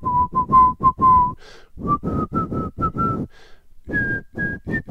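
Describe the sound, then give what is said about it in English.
A clear whistled nursery rhyme melody by a man walking down the street in a long coat carrying a shotgun, bouncing through short repeated notes in a steady sing-song rhythm with brief breaths between phrases; no talking. “He doesn't sing the last part. He whistles the whole time.”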